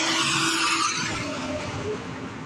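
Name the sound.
truck passing by outside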